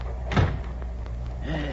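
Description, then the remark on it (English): A compartment door swings and thuds shut with a single heavy knock, followed by a few faint clicks and rattles of the latch against a low background hum. “Now, where's the door now? Right here, old boy.”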